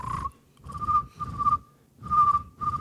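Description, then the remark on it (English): Someone whistles an imitation of a widgeon duck's call: a string of about five short, breathy whistled notes, fairly loud, with brief pauses between them and no talking. “Can we get a bird sound response to that? Oh, yeah. Some kind of widgeon.”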